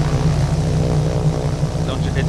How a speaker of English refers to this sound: That's me controlling it with my phone. Okay? Going around. Here it comes. Watch out. That's so cool. Look at it. Look at that thing. I'm doing that, by the way. Not now, but yesterday. In my house. Woke up the whole family. The plane in the house.